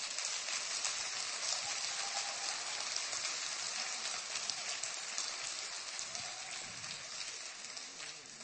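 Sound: audience clapping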